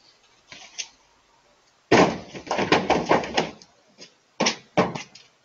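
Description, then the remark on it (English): A deer leaping over another car in a driveway and crashing into the side of a 2007 Chevy Silverado pickup truck: a sudden loud burst of thudding, rattling metal impacts, a brief pause, then two more sharp bangs. “That sound, if you didn't see it like we did, is the sound of a deer leaping over another car in the driveway and crashing into the side of that pickup truck.”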